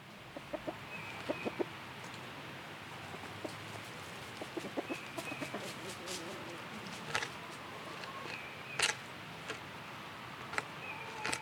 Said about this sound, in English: My chickens were around, eating the scraps.